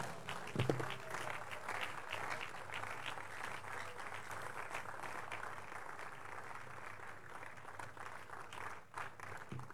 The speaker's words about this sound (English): One more time, celebrate God with clap offering and rise your feet. Keep celebrating God for this awesome testimony.